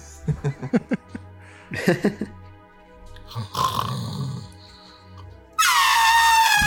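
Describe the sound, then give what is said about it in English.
During a tabletop role-playing game, a voice imitates a character's elephant-like snoring while camping for the night: a few rough, rhythmic snorts and rumbles, then a loud, high, trumpeting blare at the end, like an elephant's call. “This would have been an ideal spot to camp if not for my elephant snoring that I do.”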